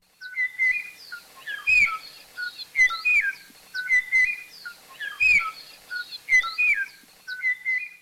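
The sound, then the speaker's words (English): A Kauai o'o, an extinct native Hawaiian forest songbird, singing: clear, fluty whistled phrases rising and falling, repeated in a steady looping pattern, fairly loud with no voices, and a few faint low thumps underneath. “A very small population of this species made it into the 1980s in the highest forest near the top of Kauai, when the last known individual was recorded singing its beautiful”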